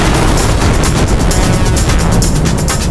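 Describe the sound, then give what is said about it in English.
A huge explosion of a spaceship full of alien refugees roars continuously, deep rumbling bass under a hiss of crackling, sputtering debris, loud from start to finish with no voices. “You wouldn't blow up a spaceship full of alien refugees.”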